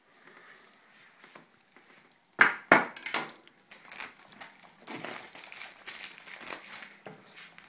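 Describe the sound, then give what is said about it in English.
The packaging of an Apple iPhone box is cut and torn open: a couple of sharp clicks or snaps, then a long stretch of crinkling, rustling plastic and cardboard scraping, fairly quiet, with no one talking. “Alright, so I'm going to cut her open.”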